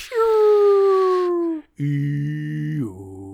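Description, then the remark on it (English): A voice imitates the whale song of a white noise machine with two long, loud moaning calls, each sliding slowly downward in pitch, the second lower and more droning, with a brief pause between them. “Whales.”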